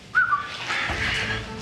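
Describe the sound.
A person gives a quick, sharp two-note whistle near the start to call a man back, clear, followed by a steady rushing background noise with no talking.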